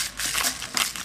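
Pepper being ground in a mill, a loud gritty crackling with rhythmic bursts of crunching, roughly two or three twists over about a second, with no voices.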